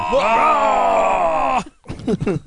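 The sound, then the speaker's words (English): A person lets out a loud, sustained guttural roar-like Klingon scream, imitating a warrior's battle cry, lasting over a second before breaking off into brief talking. “They say I think every time you hear discommendation, you should take a drink. But you have to do the Klingon scream.”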